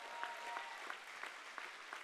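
A church audience claps its hands steadily, a dense patter of many hands with occasional louder rhythmic beats running through it, sustained at a moderate level with no talking.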